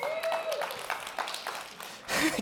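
Loud hand clapping in a steady, quick rhythm, sharp slaps repeating for about two seconds and ending in a denser, louder burst, with a brief faint tone early on.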